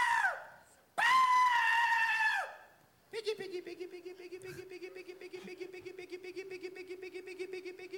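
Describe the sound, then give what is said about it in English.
A person from Seymour, Illinois pig-calling in front of about 75 people: two long, loud, high wailing hollers that slide down in pitch, then a steady stretch of rapid, low, rattling grunts imitating a pig. “This is some pig calling.”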